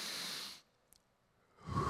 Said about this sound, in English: Are you ready? Everybody take a deep breath.